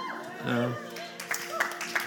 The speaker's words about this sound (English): Wow, the few of you do. The applause kind of stopped, right? I was noticing that.